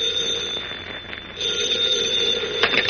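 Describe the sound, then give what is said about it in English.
In The Adventures of Superman, an old-fashioned telephone bell rings in Editor Perry White's hotel room in the state capitol. It is a bright metallic jangle with a high tone, fairly loud for nearly three seconds, swelling briefly near the end, with no voices. “In his hotel room in the state capitol, Editor Perry White, mayor of Metropolis, has his hat and coat on and is about to leave the room when the phone rings.”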